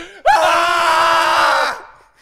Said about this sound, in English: Can we scream to end this case? Ready?